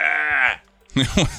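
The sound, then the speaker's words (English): A person imitates a baby deer's yell: a strained, nasal bleat held for about half a second, a brief pause, then a rougher, choppier second burst, both loud and alone. “I didn't know deer could do that, but they kind of yell, and it sounds like a noise you would make if you stuck your tongue out and just went, "Hey, I'll do it."”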